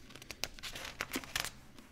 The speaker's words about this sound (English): Sorry, the beans are crunchy.